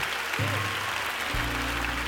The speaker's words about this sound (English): Clap your hands, ATL.